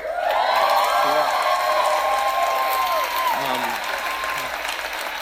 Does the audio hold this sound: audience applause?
yes